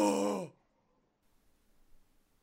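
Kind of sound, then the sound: human body sound, sudden gasp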